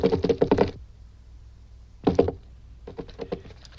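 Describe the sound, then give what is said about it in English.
Bursts of rapid knocking taps, a quick run of about six sharp raps, then a short pair, then a fainter trailing series, all loud and hollow-sounding with no talking. “May I ask you to interrupt your tapping for a moment and listen?”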